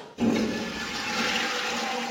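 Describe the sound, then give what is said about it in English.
A toilet flushes with a sudden onset, then a steady loud rush of swirling water that holds for about two seconds. No voices are heard. “Get off the toilet already.”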